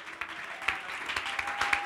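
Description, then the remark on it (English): A crowd clapping hands together while worshiping God, in a steady, dense patter of applause, with a few sharper individual claps standing out and faint tonal hum underneath. “Clapping our hands and worshiping God.”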